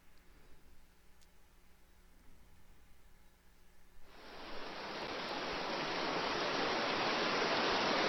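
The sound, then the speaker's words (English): A near-silent few seconds, then a recording of heavy rain played by an Alexa smart speaker starts abruptly partway through: a dense, steady hiss that swells slightly and holds loud and even to the end. “Play heavy rain.”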